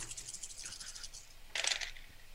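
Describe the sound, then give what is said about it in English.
Eight dice clatter and rattle across a hard surface in a tabletop role-playing game roll, a rapid scatter of clicks ending in a louder burst of tumbling before settling; fairly quiet, with no talking. “will get eight dice. Six, seven, eight. Okay. Cracking. Let's have a look.”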